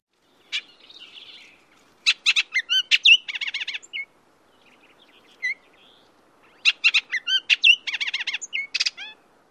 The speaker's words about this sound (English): Bullock's Oriole song is composed of rich whistled notes, rattles, and gruff introductory notes. There is also a pattern to their song which I find hard to describe, but it is familiar once it's learned.